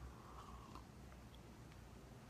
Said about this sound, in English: And so we're going to talk about it as soon as I take this sip of coffee.